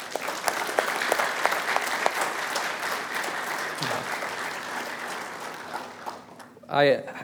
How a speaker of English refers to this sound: So would you join me in just applauding them?